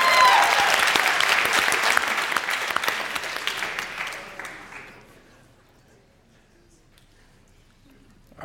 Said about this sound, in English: By the way, applause-wise, you're a fantastic audience, so thank you for that.